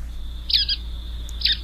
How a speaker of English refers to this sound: Can you hear that squeaky toy sound? There's a bunch of other birds calling as well, but there's a particular squeaky toy sound, and it's a brown-headed nuthatch or two. I'm on the Gator Lake Trail